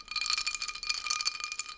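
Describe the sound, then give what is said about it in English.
Ice cubes rattle and clink against a hand-held glass full of ice and a chu-hi drink in a steady, busy jangle, with bright ringing tones that shimmer throughout. No one speaks. “Because I'm holding this glass full of ice and shit.”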